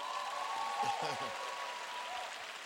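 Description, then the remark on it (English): An audience claps for a Bible verse, verse 18, as a dense, continuous wash of applause, with brief voices rising through it near the start. “Clap for this verse.”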